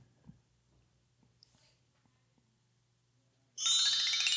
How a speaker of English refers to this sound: These chimes help me think sometimes.